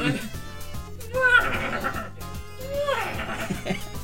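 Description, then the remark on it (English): A voice imitates a sneaky, evil horse's whinny with rising and falling warbling neighs, repeated twice, over a steady musical backdrop. “I think we'll do an evil horse. A sort of sneaky evil horse.”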